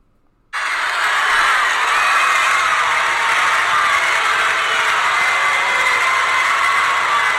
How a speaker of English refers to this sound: And then just this crowd goes absolutely apeshit. One of the coolest crowd reactions ever.